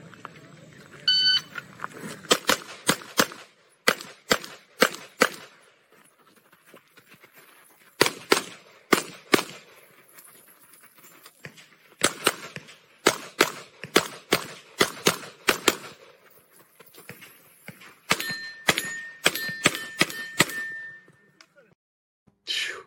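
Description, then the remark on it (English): Rapid strings of sharp gunshots, each followed by a bright metallic ting from steel targets that fall when hit, coming in several quick bursts separated by short pauses, with a sustained ringing tone near the end. “Every time he says ting, the steel falls.”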